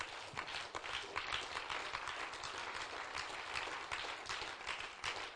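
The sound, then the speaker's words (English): An audience at an evening sermon claps their hands together, a dense, steady patter of many overlapping claps that holds at an even level for several seconds, with no voices over it. “Won't you clap your hands to him one time?”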